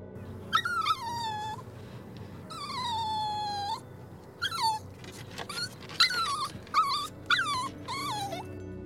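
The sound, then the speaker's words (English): A puppy whimpers in a series of high, drawn-out whines that slide downward, followed by shorter yelps and whimpers, fairly clear over a low rumbling background. “It is a sound of puppy.”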